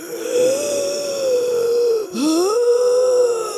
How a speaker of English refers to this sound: So he comes home with her, and you can hear her breathing yes. from downstairs. Oh, it's wheezing.